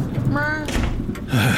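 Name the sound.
door being shut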